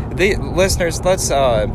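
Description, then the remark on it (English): A steady low rumble of road and engine noise inside a moving car runs beneath people talking, constant and fairly soft throughout. “But you're gonna hear background noise. Probably so, because we're in the car.”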